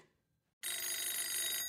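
telephone ringing

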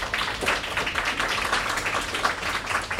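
crowd applause

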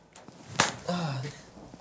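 slap

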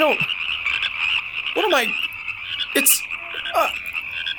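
many frogs croaking

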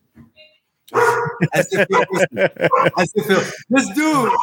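dog barking

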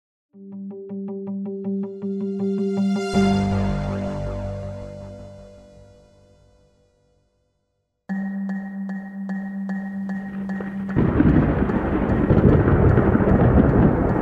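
thunder

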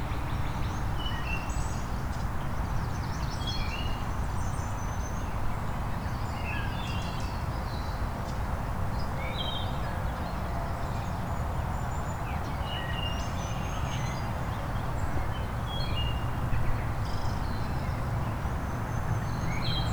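northern waterthrush song

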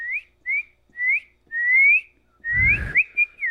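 person whistling a tune

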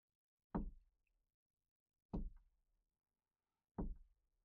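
knocking on a door

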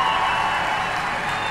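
audience applause

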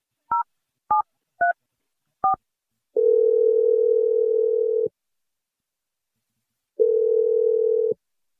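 telephone dial tone

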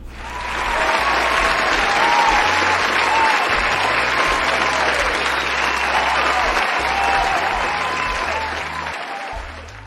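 applause sound effect

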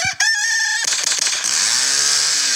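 bird sound effect

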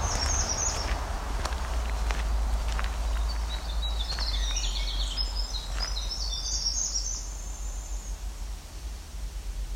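american robin singing

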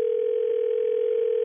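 telephone dial tone

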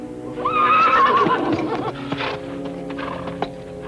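horse neighing

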